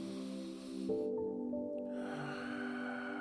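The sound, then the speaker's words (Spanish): One slow, deep breath drawn in through the nose during a guided relaxation breathing exercise, fairly soft, over a steady, sustained musical drone that continues underneath. “Vámonos tomando cuenta de nuestra respiración. Respira profundo.”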